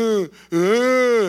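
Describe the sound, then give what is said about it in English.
A voice imitates a groan: two drawn-out, moaning vocal tones, a short one, then a brief pause and a longer sustained one, loud with no words. “Has a different sense, because if the Holy Spirit is in you, if the powerful God that created the universe is in you and the Holy Spirit is in you, you think he's groaning?”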